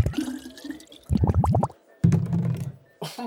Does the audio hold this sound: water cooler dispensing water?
yes